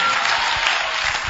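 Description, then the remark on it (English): An audience at a church service clapping hard for Jesus, a dense, steady wash of many hands striking at once, loud and sustained without a break, with no voices standing out above it. “And as you're clapping harder, may the Holy Ghost visit you.”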